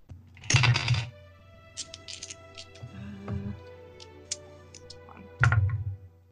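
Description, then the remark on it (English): Many dice clatter across a hard table in a loud burst, followed by a few scattered light clicks as they settle, then a second rattling roll near the end, as a player rolls for a three-ray Scorching Ray spell. No one speaks. “It's going to be hard because there's a lot of dice.”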